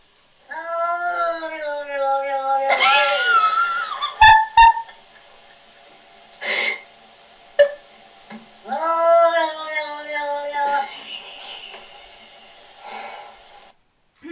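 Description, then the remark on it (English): A sphynx cat lets out long, wavering yowls and meows, broken by sharp hissing bursts and a few short thumps, loud and otherwise quiet, as its owner, dressed as a wolf, crawls along the floor towards it. “when its owner dresses up as a wolf and crawls along the floor towards it”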